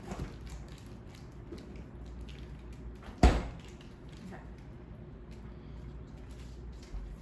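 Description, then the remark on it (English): A fridge door is handled as something is put back in the fridge while baking, ending in one sharp, solid thud as it shuts, with a low steady hum and faint rustling before and after. “This can go back in the fridge.”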